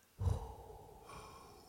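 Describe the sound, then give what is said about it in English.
A voice imitates a sudden big gasp, holds the breath, then lets it out in a long, steady exhale through the lips, with no words spoken. “she takes this huge gasp. She does this breath and she holds it and then she lets it out with like her lips kind of like.”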